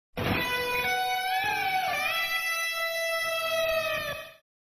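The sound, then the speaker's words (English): A guitar clock sound: a sustained, bright guitar chord rings out steadily for about four seconds, its pitch bending slightly before it cuts off abruptly. No one speaks. “Some of my other premium clocks are, guitar clock.”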